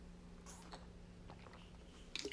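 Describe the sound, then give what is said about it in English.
Someone takes a quiet sip of water, with soft wet mouth and swallowing sounds over a low steady hum. A brief clicky gulp comes at the end, and no one speaks. “Let me take a drink of water.”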